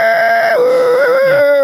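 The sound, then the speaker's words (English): A voice imitates a dial-up modem with a loud, sustained, nasal screech. Its steady tones hold, then step down in pitch and warble across about a second and a half, with no talk. “Remember that modem sound?”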